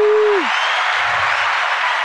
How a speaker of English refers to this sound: Can we get another applause, please? Let's get another applause real quick.